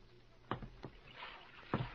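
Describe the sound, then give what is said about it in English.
A small rowboat moves through water, with a few knocking oar strokes and soft splashing over a low, steady wash. No one speaks. “You there. You in the boat.”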